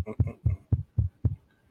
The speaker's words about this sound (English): I hear that, but I don't know what the fuck that is. It's like a heartbeat. It's a heartbeat.